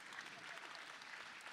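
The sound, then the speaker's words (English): An audience claps continuously, a dense, even patter of many hands with a bright, crackling texture, held at a steady, soft level for the whole stretch. “Why are they clapping?”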